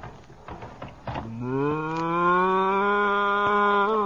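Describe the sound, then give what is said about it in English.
A few soft knocks and rustles, then a cow named Bossy lets out one long, loud, drawn-out moo in a barn that swells and holds steady for nearly three seconds. “I've been milking this cow for 3 months, and I think I can manage.”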